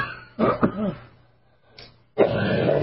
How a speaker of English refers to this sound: Excuse my cough.